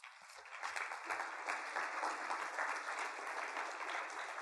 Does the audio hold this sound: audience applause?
yes